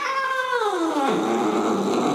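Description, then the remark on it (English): A single loud yowl from a cat named Boss: a drawn-out meow that slides downward in pitch into a harsh, caterwauling wail lasting about two seconds, with no talking. “Boss called the shot with a mighty meow, which some have translated as "Protect our pumpkin."”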